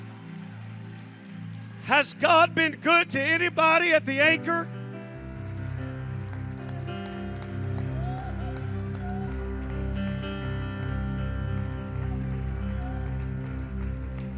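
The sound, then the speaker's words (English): A church audience claps steadily during a worship service, a dense rain-like wash of many hands, welcoming a minister after a loud shouted line from a speaker, with a low musical drone sustained beneath. “If God's done anything for you, you ought to clap your hands like you mean it.”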